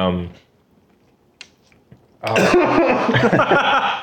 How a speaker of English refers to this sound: He's coughing. He's dying.